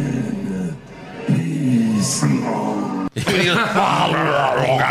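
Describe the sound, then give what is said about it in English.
A recording of wrestler Taker's deep, guttural growl plays back in drawn-out, rasping bursts, then after a sudden cut a loud, roaring crowd noise takes over. “It was Taker doing his growl, like his terrible growl.”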